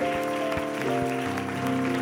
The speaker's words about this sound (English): Why don't everybody in this house clap your hands to the Lord together?